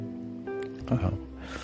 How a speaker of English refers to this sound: So we rinse it off, cleanse it real good, get up in there, really deep clean that skin and that hot, and then medium water, medium cool.